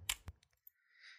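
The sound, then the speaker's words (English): A few soft, irregular computer keyboard key clicks tap out, the first couple sharper than the rest, followed by a faint, steady high-pitched whine. “Let me just hit some keys.”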